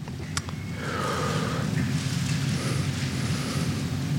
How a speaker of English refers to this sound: I'll wait for the pages to quit rustling.